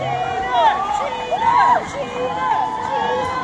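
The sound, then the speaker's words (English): The crowd at a singer's concert cheering and shouting, a dense, steady roar of many overlapping voices with higher whoops rising and falling throughout, loud and continuous for the whole few seconds. “Can we just play this audio of … at his concert? Because listen to the crowd.”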